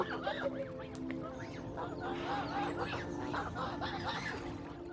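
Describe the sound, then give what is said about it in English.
Several ducks coming very close quack in a busy, overlapping chorus, their nasal calls rising and falling continuously over a steady outdoor background hum. “I'll let the ducks have a moment.”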